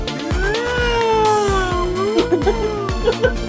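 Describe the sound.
A voice imitates a police siren with one long wail that rises and falls, then breaks into short warbling bursts, all over a steady, thumping low beat.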